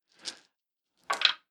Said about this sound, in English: About a minute later, let's say I'm going to roll some of these dice. I'm going to roll a bunch of these dice.